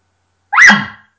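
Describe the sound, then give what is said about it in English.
A single sharp bark blown forcefully on a latex reed call with the tongue against the reed, the first part of the call. It is loud, rises quickly, then trails off raspily after about half a second, with silence around it. “But you're blowing very forcefully out on the latex, with your tongue against the reed, and it's going to make this sound initially.”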